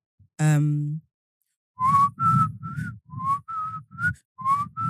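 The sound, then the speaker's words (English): Someone whistles a short, bouncy tune, about eight quick breathy notes rising and falling, after a brief low voiced tone at the start. “Oh, you can whistle as well?”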